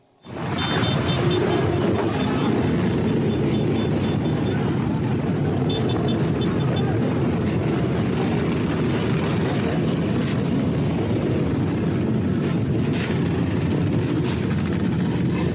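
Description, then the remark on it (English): A dense, continuous roar of many motorbike engines, loud and steady throughout, as gangs ride motorbikes through the streets of New York City, with a faint high whine over the rumble. “Major gangs riding bikes all over the place, motorbikes.”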